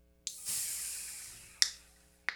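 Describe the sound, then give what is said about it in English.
A sharp crack of a nitrogen beer can tab opening in front of a microphone, followed by a long, steady hiss of escaping gas that slowly fades, then two brief metallic clicks. “I'm gonna see what it sounds like opening in front of the mic because usually nitrogen has like a weird sound when you open it.”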